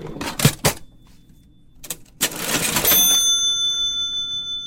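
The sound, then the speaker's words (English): An old mechanical cash register from a liquor store, thought to be a 1944 model, clacks through a few sharp key strikes and a drawer crank, then its bell rings out bright and high, the tone sustaining and slowly fading. “It's got a good bell, doesn't it?”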